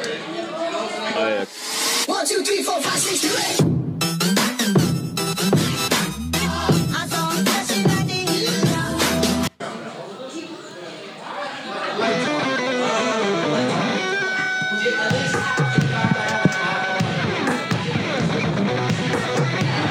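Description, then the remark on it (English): A loud pop song with a singing voice over a steady beat and full band, briefly cutting out twice before the music carries on without a break. “You obviously know this song.”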